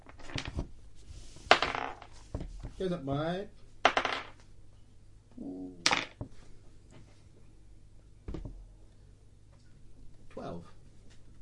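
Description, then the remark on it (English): Dice, including a D100 rolled during a tabletop game, clatter and tumble across a hard tabletop in several short, sharp bursts of clicks, with people talking in between. “Roll a D100, tell me what you get.”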